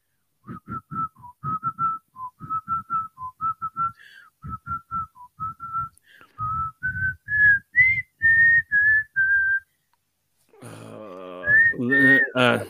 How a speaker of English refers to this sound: Do you want to, let's do a real quick, whistling name that tune. All right. You tell me if you know the song I'm singing.